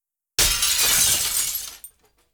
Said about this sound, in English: He reached down, picked up a brick, and threw it right through one of the big glass doors. The door shattered loudly into a million pieces.